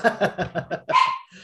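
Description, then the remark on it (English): Dogs bark in a quick run of five or six sharp yappy barks, followed by a longer, higher bark, moderately loud, with no talking. “My dogs are chiming in.”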